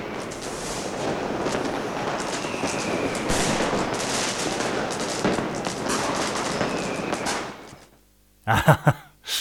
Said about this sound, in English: So that is Bonfire Night. Fireworks. That's right, fireworks show in Berlin.